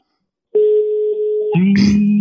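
A phone line's ringing tone sounds once as a steady, clear electronic beep lasting about a second while a call is being placed. It then gives way to a lower buzzing hum and a brief clatter, like the call connecting.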